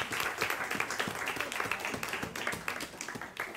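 A round of applause: many hands clapping in a dense, steady patter for a few seconds, moderately loud and without a break, with no voices standing out.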